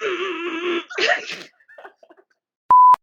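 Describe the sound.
A voice mimics a novelty ringtone melody with a held nasal note and a burst of sputtering vocal sounds, followed after a pause by a loud, sharp electronic beep.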